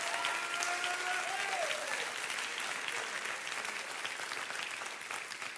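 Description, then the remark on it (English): An audience at a church on a Wednesday night claps hands in a dense, sustained wash of applause that holds steady for several seconds, with a faint voice or tone rising briefly underneath early on. “Come on, let's clap our hands and rejoice right now.”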